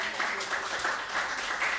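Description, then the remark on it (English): A crowd applauds steadily for the intros just given, a dense wash of many hands clapping together at an even, sustained loudness throughout, with a faint murmur of voices mixed in. “Can we just give a round of applause for those?”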